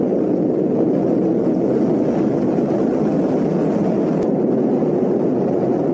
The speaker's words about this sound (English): launched late Sunday on a United Launch Alliance Atlas V rocket from Launch Complex 41